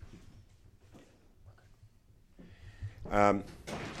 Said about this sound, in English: Just want to close that door out.